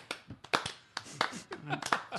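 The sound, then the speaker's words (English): A few sharp, irregular hand claps, not a steady rhythm, with people talking over them at moderate loudness. “No, I think we were just clapping.”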